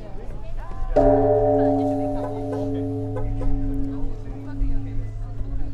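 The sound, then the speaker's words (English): A single deep temple bell is struck once, its rich humming tone ringing out and slowly fading over several seconds, with faint background noise throughout. “How often do they ring the bell at the temple?”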